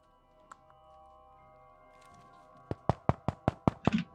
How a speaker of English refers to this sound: you hear a rap at the door, and Professor Amber's laboratory, Jonathan Greaves, Sir Jonathan Greaves.